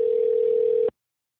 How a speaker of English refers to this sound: And I think his thing rings like 5 or 6 times before it will pick up the phone and give you the voicemail message and stuff.